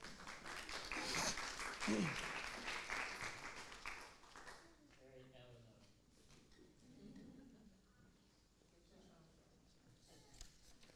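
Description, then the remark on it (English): A short round of audience applause, a dense patter of many hands clapping for about four seconds, then it fades out as voices begin talking quietly. “Okay, let's round of applause.”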